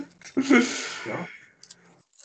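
Someone munches on chips: a loud burst of crisp crunching lasting about a second, fading into a few faint clicks and mouth sounds.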